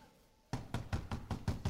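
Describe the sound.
Firm, rapid knocking on a door after a brief quiet moment, about six close, even raps in a steady rhythm, fairly loud and with no voices.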